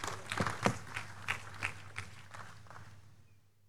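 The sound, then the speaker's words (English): An audience claps for the Lord in a burst of dense, overlapping applause that gradually thins out and fades away over a few seconds, with a steady low hum beneath it. “Give the Lord a big clap of him.”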